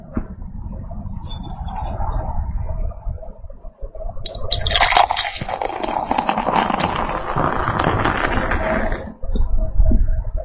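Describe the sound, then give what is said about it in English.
A Märzen beer pours into a glass, a steady, fizzy splashing rush lasting about five seconds over a low background rumble, then cutting off abruptly. “Here goes the pour.”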